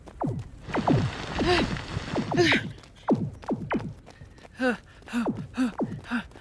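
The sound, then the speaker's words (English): Rapid sci-fi blaster shots, a dozen or so sharp 'pew' zaps, each sweeping quickly down in pitch, fired in an irregular volley with a burst of hissing static early on. “Is that blaster fire I hear?”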